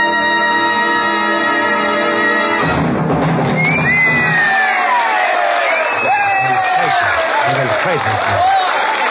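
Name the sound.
audience cheering and screaming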